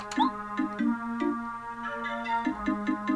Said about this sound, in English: And they check. And they whistle three times.